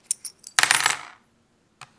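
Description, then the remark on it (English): A few light metallic clinks, then a bright jangling clatter of brass coins tossed onto a hard surface to cast an I Ching hexagram, settling, followed by one last small clink. Clear, no voices. “This begins by tossing brass coins 6 times.”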